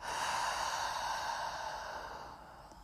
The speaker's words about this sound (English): And take a deep breath, breathing into your low belly, noticing your belly expand as you breathe. Exhaling out through the mouth.